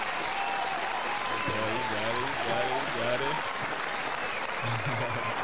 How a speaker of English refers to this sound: Y'all ain't give me a chance. Y'all want to start doing a fake applause.